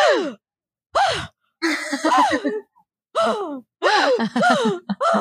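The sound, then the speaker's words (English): A voice imitates an actor's little gasps from a movie: a series of short, breathy gasps, each quick intake rising in pitch, repeated in bursts with brief pauses between them, fairly loud with no other talk. “He does this little thing where he does these little gasps and he does them all throughout the movie where he goes.”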